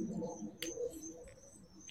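Crickets chirp in a steady, thin high-pitched trill that runs unbroken through the whole moment, over a soft low murmur with one brief hiss partway through.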